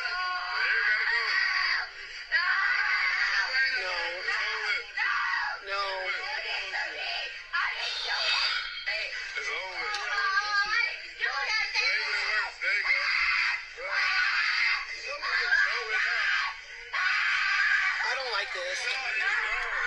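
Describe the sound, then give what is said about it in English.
A child screams and wails almost nonstop for about twenty seconds, loud and shrill, with strained, wavering cries broken only by brief gasps for breath. “This kid is going to scream a lot, so just bear with me.”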